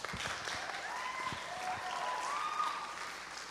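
An audience claps steadily to welcome a speaker, a dense wash of applause holding at an even level throughout, with faint whistles or cheers rising over it.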